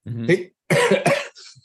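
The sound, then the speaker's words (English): A short vocal sound followed by two loud, harsh coughs in quick succession, then a softer trailing breath, from a man with a cough who has Ricola cough drops in his mouth. “But he said, I'm sorry, I have these Ricolas in my mouth. I got a cough.”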